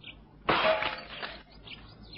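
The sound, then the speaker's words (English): A studio window pane is smashed to break in: one sudden loud crash, then about a second of scattered, high-pitched tinkling as glass falls and settles, with faint chirpy sounds before and after. “I think it better to break in through these windows. Stand aside. Leave this to me.”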